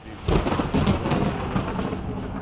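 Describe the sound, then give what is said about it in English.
A thunder sound effect: loud rolling thunder rumbles continuously, with a sharp crack-like surge near the start and another swell shortly after, filling the whole stretch with deep, noisy roar and no voices. “I'll give him a storm, all right.”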